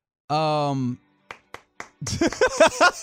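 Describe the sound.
A sustained tonal voice-like note gives way to three crisp, evenly spaced claps, moderately loud, followed by someone starting to talk.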